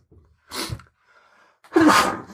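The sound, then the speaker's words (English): A loud sneeze: a short sharp burst first, then after a brief pause a fuller, louder sneeze. Nobody speaks. “God bless you.”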